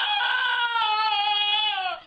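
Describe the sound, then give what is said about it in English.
A donkey named Harriet, who lives near Galway, Ireland, brays in one long, loud, nasal wail held steady for about two seconds, sagging slightly in pitch before cutting off, with no voices around it. “The Singing Donkey”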